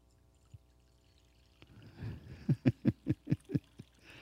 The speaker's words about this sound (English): I'm putting this bowl right there. And I'm going to pour this water right here.